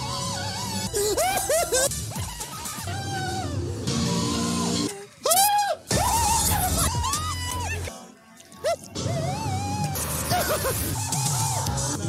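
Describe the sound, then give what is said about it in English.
A string of a man's loud screams spliced together, each yell rising and falling in pitch, with abrupt cuts and short gaps of near-silence between segments. “Then they put a compilation together. This is me screaming on the...”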